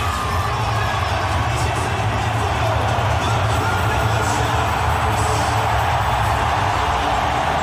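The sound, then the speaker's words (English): A huge crowd of about 84,000 to 85,000 at a grand final between Melbourne and Cronulla roars without letup, a dense, steady wall of cheering and whooping that stays loud for the whole stretch with no single voice standing out. “Listen to this roar now.”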